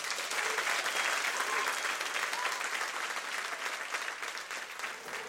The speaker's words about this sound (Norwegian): Men nå en stor applaus til kveldens gjest, Jørn Hurum.